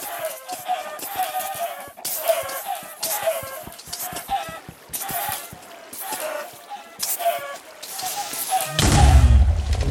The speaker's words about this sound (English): Why do I hear chickens clucking? I feel like I'm playing Zelda.